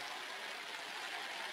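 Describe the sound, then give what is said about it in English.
A heavy rain shower pours down in a steady, dense hiss, continuous throughout, with no voices or other sounds breaking through. “Well, this is a shower.”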